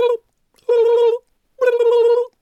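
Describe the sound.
Someone mimics a turkey call with their voice: a short clipped note, then two longer, loud, reedy warbling calls at a fairly high pitch, separated by brief silences.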